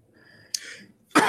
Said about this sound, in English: Hold on, I got a cough. Talk amongst yourself.